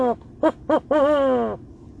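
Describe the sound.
A person imitates an owl's hoot, calling back to a real owl overhead: two short hoots followed by one long, drawn-out call that slides downward, fairly loud with no other sounds around it.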